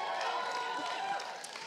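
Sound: audience applauding and cheering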